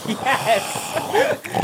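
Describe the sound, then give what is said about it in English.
A person does a quick, snorting pig impression: a run of nasal grunts and snuffles packed into under two seconds, loud, with no pause between them. “Well, that was just a pig that you did.”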